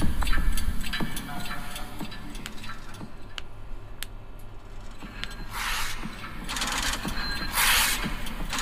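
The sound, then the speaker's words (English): Steady clock ticking, sharp clicks repeating in an even rhythm over a low hum, with brief hissing swells of noise near the end. “There's like the heartbeat, the clocks, the cash register, the wow, wow.”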